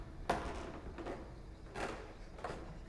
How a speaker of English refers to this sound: The door shut, but the latch didn't stick, and I saw it swing back open by about an inch.